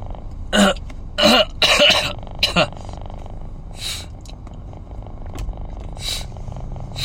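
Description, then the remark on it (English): A person with a runny nose makes a few wet throat-clearing bursts in quick succession, followed by quieter snuffly breathing and a faint sound of swallowing mucus near the end. “This snot thing, swallowing my snot, is like way more annoying than my cough right now.”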